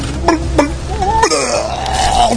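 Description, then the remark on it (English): A voice acts out a seasick person on a ship retching and vomiting overboard: a few short gagging heaves, then a longer, gurgling, strained upchuck that trails off, loud and with no speech. “Then I lean overboard, and I always throw up.”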